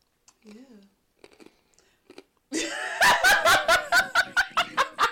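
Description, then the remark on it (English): Loud chewing erupts after a few faint mouth clicks, a quick steady run of about eight wet chomps, each one sharp and punchy. “I was chewing the fuck out of this shit. Tearing that shit up.”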